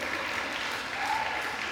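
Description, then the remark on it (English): Steady applause from an audience, a dense wash of many hands clapping at once, sustained at an even loudness throughout with no voices standing out. “You can clap for that.”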